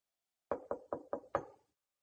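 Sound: knocking on a door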